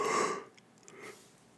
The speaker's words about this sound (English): I got a cough and I got a yawn. What is going on with me?